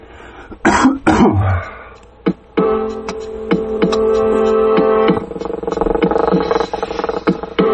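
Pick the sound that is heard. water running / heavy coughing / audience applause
heavy coughing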